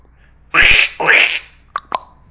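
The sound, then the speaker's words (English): A person imitates a duck with two raspy, nasal quacks, followed by a couple of short clicking mouth sounds. The voice is fairly loud, with no other talking. “It means like a duck noise. Oh. Like a swan makes.”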